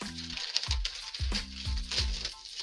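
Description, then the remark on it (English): A newspaper page is turned over to page 10 with a crisp, crackling rustle of paper that keeps going in a few uneven bursts for a couple of seconds. There are no voices, just a faint low hum beneath it. “Okay, turning the page again.”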